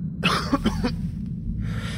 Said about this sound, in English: I coughed and tried to take in a full breath.